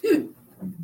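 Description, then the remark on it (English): A single sharp sneeze bursts out, a quick breathy explosion, followed by a brief low murmur of sound as it fades. “Bless you.”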